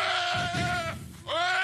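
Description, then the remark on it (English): A deer call: a loud, nasal, bleating cry that wavers and breaks off, then after a brief pause a second shorter bleat follows. No voices. “Let's listen to the deer, not the remix.”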